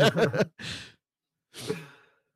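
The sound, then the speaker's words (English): Someone yawns: a short voiced, groaning stretch followed by two long, breathy exhales with a pause between them, with no speech. “Fucking yawning.”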